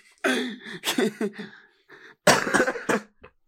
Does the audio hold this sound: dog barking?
no